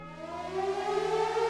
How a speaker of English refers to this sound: The siren started as a low howl, but within minutes it had grown to a bone-chilling wail.